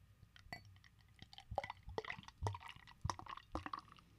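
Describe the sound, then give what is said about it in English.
Dark Lord beer from Three Floyds Brewery pours into a glass, a run of gurgling, splashing glugs and drips with irregular bursts of fizz, fairly quiet and with no talking. “I'll let you go ahead, pour this one right into the mic.”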